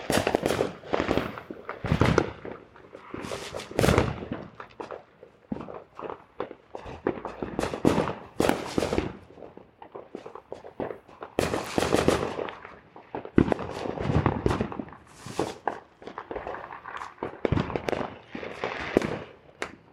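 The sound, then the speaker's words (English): Outdoor backyard ambience filled with irregular bursts of firecrackers popping, sharp loud cracks scattered throughout, some in quick clusters, with occasional softer shuffling sounds in between and no one talking. “So the recording you are hearing right now is from the backyard.”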